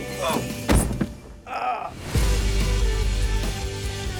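A door is opened and shut: a couple of quick knocking thuds, a brief rustle, then a heavier thump followed by a low, steady rumble.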